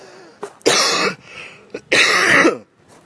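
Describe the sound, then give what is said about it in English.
Two loud, harsh coughing bursts, each ragged and lasting about half a second, with a quick throat-clearing rasp before each one and a pause between them. “This is becoming the fucking coughing podcast very quickly.”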